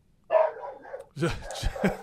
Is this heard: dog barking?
yes